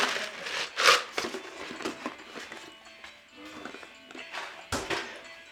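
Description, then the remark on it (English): A plastic water bottle being handled: irregular crinkles and crackles with a few soft thunks, two sharper bursts standing out, at a moderate-to-quiet level with no talking. “You got a bottle of water?”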